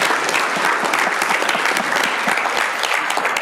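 Steady, dense applause from an audience, many hands clapping at once in a continuous, fairly loud wash of crisp claps with no voices standing out.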